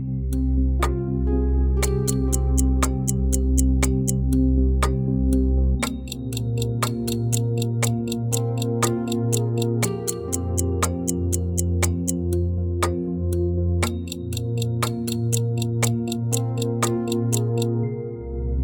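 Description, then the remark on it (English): A steady clock tick-tock repeats about twice a second, crisp, layered over a sustained bed of low, shifting musical tones. No one speaks. “While the ticking down of days, years, and decades may seem like an arbitrary way to mark the passage of time, it's still a wonderful opportunity to look back at the year just passed with gratitude”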